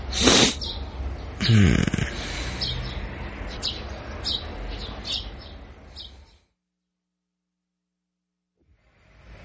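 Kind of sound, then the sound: bird, birds chirping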